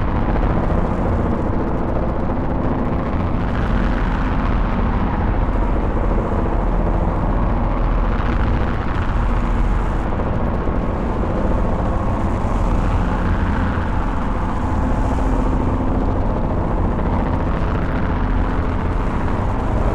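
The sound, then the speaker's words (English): A dense, rumbling drone from a modular synthesizer, made with a Morphogene module, holds steady and loud throughout. It is heavy in the low end, with slow swells of brighter texture rising and falling every few seconds as the frequency spectrum changes. No voices. “Which I think breaks up that kind of periodic sine wave rising and falling nicely.”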